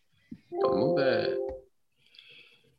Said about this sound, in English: That Star Tours chime, that shit brought back some like core memories, man. That's my text ringtone.